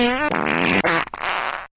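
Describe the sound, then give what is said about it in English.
A loud fart noise: a tonal, buzzy blast that breaks into raspy sputters, with a second brief squelch near the end, about two seconds in total with no talking. “Now, listen to some fart noises.”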